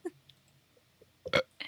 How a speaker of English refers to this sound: Like burping into the microphone. What am I supposed to do?